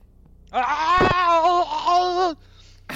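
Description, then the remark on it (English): A loud, drawn-out acted scream of a character screaming at a giant penis, lasting nearly two seconds, its pitch wavering and quavering like a wail, with a sharp knock partway through and a brief click after it ends. “It attaches from his body, and Frank screams at it and smothers him.”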